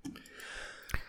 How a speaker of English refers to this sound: Jesus Christ. Wow. Destroying your eardrums on the pod today. Sneezing on the pod. Sneezing right on the pod. Cover your mouth.